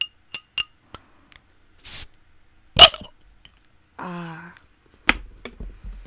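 A cold glass bottle of Corona Extra beer being opened: a few sharp glassy clinks, a short burst of fizzy hiss, then a crisp snap of the cap, followed by a brief low throaty sound and another clink.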